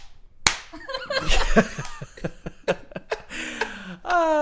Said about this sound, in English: You gotta start with a slap sound.